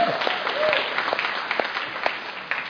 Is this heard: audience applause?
yes